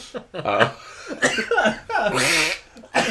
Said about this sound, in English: Oh no. Oh, I'm laughing, but it's making me cough.